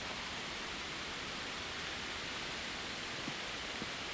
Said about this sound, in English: Yeah, it's raining pretty good. Sounds amazing.